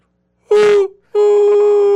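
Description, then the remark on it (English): A voice imitates a train whistle with two steady, mid-pitched hoots: a short, slightly falling one, a brief pause, then a longer held note that sustains to the end. “I want to hear a choo-choo sound. Does anyone do a choo-choo imitation?”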